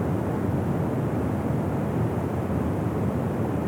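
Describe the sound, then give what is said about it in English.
A waterfall rushes in a steady, unbroken roar, its deep, full-bodied noise holding at an even loudness throughout, with no voices or other sounds. “Accepting and allowing yourself to live with the flow just like this waterfall.”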